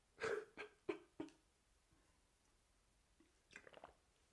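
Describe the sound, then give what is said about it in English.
Sips and swallows of water: four quick gulping pulls in a steady rhythm, a short pause, then a cluster of softer wet mouth sounds and breath. “Let me get a sip of water before I finish this bear shit.”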